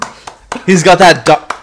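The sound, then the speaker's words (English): A few sharp, scattered hand claps ring out, followed by a loud voiced shout or cheer, then one more clap at the end. “Clapping pod.”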